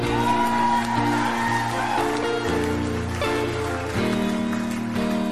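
Steady crackling applause from an audience with a few whoops, continuous and fairly loud for several seconds, with sustained music chords playing underneath; the applause is for the bus driver.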